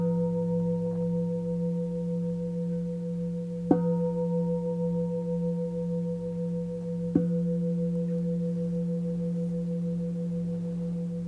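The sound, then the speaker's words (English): A meditation bell rings with a steady, humming resonance, struck twice more at roughly even intervals so each fresh chime rises over the lingering tone. No one speaks. “And that no matter how busy the mind is thinking, however hard you might think this practice is, it's simply attending in the moment, as simple as hearing the sound of a bell.”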